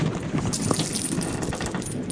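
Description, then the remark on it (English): Gold doubloons cascade and clink against each other in a dense, bright metallic jingle that continues steadily for a couple of seconds, with no voices over it. “Doubloons!”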